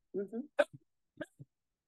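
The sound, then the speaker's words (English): Dogs make soft, short vocal noises in the background: a brief whine followed by a few quick yips and grumbles, fairly faint and scattered across two seconds. “Girls, my dogs are chatting in the background.”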